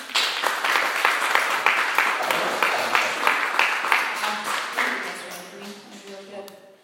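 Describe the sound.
A light, scattered round of applause from a small audience, steady for several seconds before thinning out as a voice begins to speak near the end.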